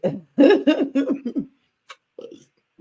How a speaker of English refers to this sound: Now cough, bitch.